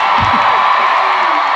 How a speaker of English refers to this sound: Did you know that about your this is, come on, cheer for your fucking home team.